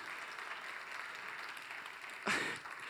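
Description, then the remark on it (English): A church audience claps in a steady, dense patter of many hands, sustained throughout, with a brief louder burst near the end before settling back into the same even applause. “And the people here are clapping.”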